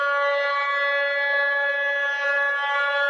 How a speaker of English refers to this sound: Train. Is it a train? Yes, it's a train.